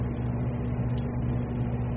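A box fan and a ceiling fan running together on a 60 to 70 degree night, a steady whooshing drone with a low motor hum underneath, unchanging in level throughout with no voices.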